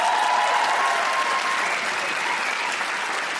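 An audience applauds steadily, a dense wash of clapping that holds at an even, fairly loud level for a few seconds with no voices over it.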